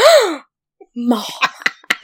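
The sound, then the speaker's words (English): A short, voiced gasp of mock shock rises and falls in pitch, followed by a brief pause and then quick breathy vocal bursts and murmured talk. “Gasp.”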